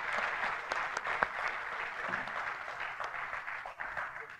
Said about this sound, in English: Let's give him another round of applause for sharing his life so openly with all of us.